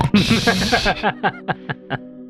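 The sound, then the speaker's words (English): A person imitates a pig, making a burst of nasal squealing grunts and then about five short, evenly spaced oinks that fade toward the end, loud. “The wolves still don't realize I'm a pig.”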